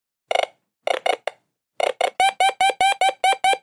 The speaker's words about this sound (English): Oh, no problem. I have an app for that. Well, of course you do. The Find My Crystal app locates any of my crystals with a beep that gets faster and faster the closer you get to it.